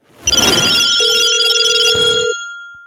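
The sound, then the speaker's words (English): A telephone rings once for an incoming call-in, a loud burst lasting about two seconds, with a bright, rattling bell tone that cuts off and leaves a faint fading hum. “Let's get into some phone calls.”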